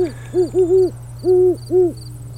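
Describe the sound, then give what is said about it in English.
At night under an overcast sky, an owl gives a quick series of about five low, hollow hoots, clear, over a steady low hum with faint high chirping in the background. “So, anyway, cool. There's an owl.”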